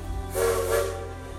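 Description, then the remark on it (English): A steam train whistle sounds one sustained, fairly low tone wrapped in loud hissing steam, swelling briefly and then tapering off over a steady low rumble, as the train pulls away from a train station at night. “As the train moves away, the lights of the small house gradually fade, blending into the darkness of the night.”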